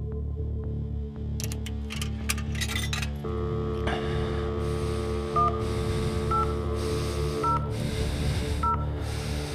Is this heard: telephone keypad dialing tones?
yes